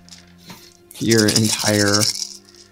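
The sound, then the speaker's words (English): Dice rattle loudly, a dense clattering burst lasting about a second that briefly pauses, then shakes again, with quieter bits before and after. “I'm super ready. I got my dice here.”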